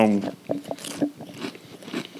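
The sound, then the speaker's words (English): Crunching and chewing of a chip packed with powder, with a quick series of crisp, irregular bites and wet chews, preceded by a brief vocal sound at the very start. “This chip in particular, after you've had them for like... good to chew them.”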